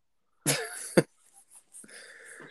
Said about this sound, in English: Mate, you all right? No, I'm not. I guess I've got a damn cough I can't get rid of. You've had it for 2 years. It's fucking awful. Just excuse me, I'm dying.